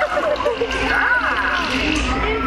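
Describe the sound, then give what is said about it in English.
Loud, continuous splashing and sloshing of water sprayed onto an audience fills a couple of seconds, with voices audible over the spray. “Well, my new 3DX is going to shower you all with humor.”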